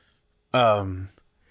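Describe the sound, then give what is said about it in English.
A single voiced yawn, loud and about half a second long, with a drawn-out tone that slides downward in pitch before trailing off into quiet. “Give me a second. I'm yawning.”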